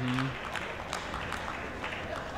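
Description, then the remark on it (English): A crowd in a chamber claps steadily throughout during a vote count, as the clapping gains momentum: a dense, even patter of many hands with a few sharper bursts, and a brief voice at the start. “And now you're hearing clapping because they're getting momentum.”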